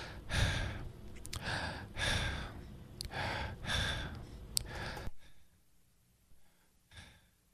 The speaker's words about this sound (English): So check this out. I'm going to breathe normally, right, like this, and I'm not going to stop breathing just like this until you hear me talking again. But I'm going to show you how the gate is even gating out some of my breathing noises.